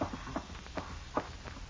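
Footsteps coming down a hallway: a steady series of soft, muffled thuds at an even walking pace, four or five steps over a low background hum, with no one speaking.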